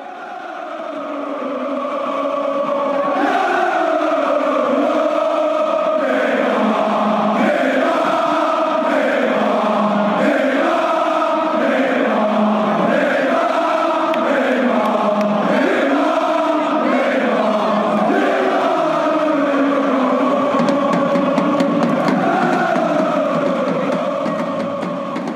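A huge stadium crowd at a PSG game chants Neymar's name in unison, the rhythmic syllables repeating again and again over a constant roar, loud and sustained for the whole stretch.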